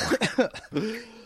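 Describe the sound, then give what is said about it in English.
A person mimics a cat hacking up a hairball: a few quick, throaty retching bursts that end in a drawn-out, strained gagging note, loud with no words. “It's a spitball, not cough hairball.”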